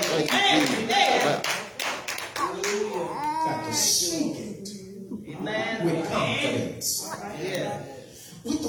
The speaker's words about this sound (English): Clap your hands and give God some praise like that.